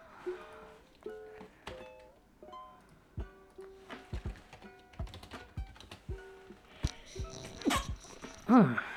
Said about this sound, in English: That's me sneezing.